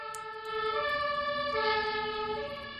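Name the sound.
fire engine siren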